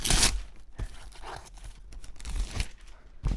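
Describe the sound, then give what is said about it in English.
Tissue paper in a Christmas gift box rustles and crinkles in irregular bursts, with a sharp tearing-like crackle at the start and more crumpling swells throughout, fairly loud, with no one speaking. “And there's tissue paper.”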